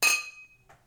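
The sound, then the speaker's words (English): A single bright glass clink rings out as glasses of Ballast Point Victory at Sea porter, a dark beer with coffee and vanilla, are raised in a toast, its high tone lingering and fading over half a second, followed by a faint soft rustle. “Cheers. Cheers.”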